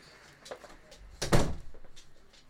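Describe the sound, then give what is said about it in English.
A bedroom door swings shut with a single solid thump, preceded by faint shuffling and a soft creak, then quiet room tone. “Sorry, let me close my door because Luna just came in.”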